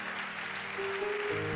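An audience claps steadily in praise to the Lord at a morning church service, a broad wash of many hands at moderate volume, with a sustained organ or keyboard tone ringing underneath.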